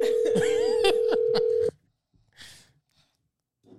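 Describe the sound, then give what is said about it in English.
A steady electronic ringing tone from a phone call that goes unanswered hums for under two seconds with some clutter over it, then cuts off abruptly, leaving a brief faint rustle and near silence. “Now he's not answering the phone.”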